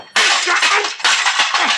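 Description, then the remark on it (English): A telephone gets smashed with a loud crash, followed by a second burst of harsh clattering and rattling debris, all within under two seconds and with no voices. “the phone, you busted it.”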